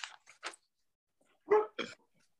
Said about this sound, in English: I'm sorry, I'm trying to mute myself while my dogs bark like idiots.